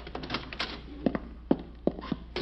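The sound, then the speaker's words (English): Several firm, hollow knocks on an apartment door along an apartment-house hallway, spaced unevenly in a short series, moderately loud over a faint background hum, with nobody answering. “Wonder which one they went in. Nobody's there. Sounds hollow.”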